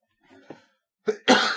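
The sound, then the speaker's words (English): A soft, raspy throat sound followed by a sharp, loud cough burst from someone coughing after laughing, with no talking. “I'm still coughing from laughing at that Mario's from Brooklyn.”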